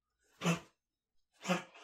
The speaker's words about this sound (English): Ooh, sorry, my dog's coughing. Yeah, because they're sorry, having a little coughing fit. You okay, buddy? Get that out.